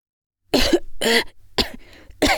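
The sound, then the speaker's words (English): Four harsh, loud coughs in quick succession, with short raspy breaths between them, from someone sputtering after choking on coffee in mid-drink. “I sputtered between coughs.”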